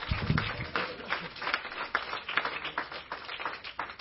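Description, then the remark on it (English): A church audience claps its hands for Jesus after a prayer, a dense, steady patter of many overlapping claps that keeps going evenly for several seconds at a moderate level, with no clear speech on top. “Would you clap your hands one more time for Jesus?”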